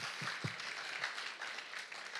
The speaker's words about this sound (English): Thank God for a church that's willing to catch the vision and run with it. Amen. Can I just applaud you right now? Amen.